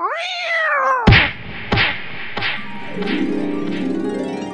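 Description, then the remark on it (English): A cat lets out a drawn-out, wavering yowl as it is used to hit someone, followed by three sharp, heavy thwacks in quick succession, then a few softer thumps and a lingering rumble. “I've never been hit that hard with a cat before.”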